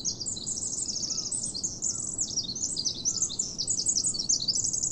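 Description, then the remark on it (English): A Pacific wren pours out a long, rapid, high-pitched song of tumbling trills and buzzy notes, continuous and bright, over a soft low rumble of ambient background noise. “This song is from a Pacific wren, and it might be the smallest bird species here, but it packs a mighty song.”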